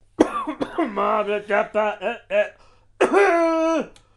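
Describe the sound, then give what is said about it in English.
A person vocally imitates how Barney coughs: a run of short, strained, voiced bursts followed by a longer drawn-out hacking sound, fairly loud. “So, yeah, that's how Barney coughs, if you are wondering.”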